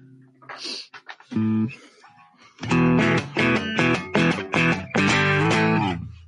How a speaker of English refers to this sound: Okay, fine. Pick up the guitar and play it, but don't plug it back. Don't turn it back on.